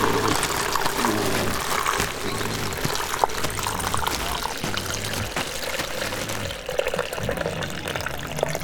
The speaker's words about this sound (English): I'll just pop him in this plastic bag for you. Better put some water in so he can breathe.